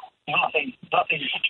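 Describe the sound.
Thin, telephone-filtered voices come through in short, muffled bursts: a caller's own radio broadcast, turned up at his end on the Gold Coast, echoing back over the phone line, with the talk blurred and hard to make out.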